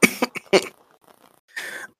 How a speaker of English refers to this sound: So she slowly stands up and just kind of coughs a bit of the smoke out of her lungs.